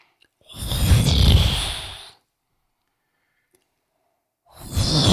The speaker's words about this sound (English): Something large, I think, is coming. Those are either wings flapping or somebody snoring. Sounds like maybe giant steps. No, it sounds like wings flapping.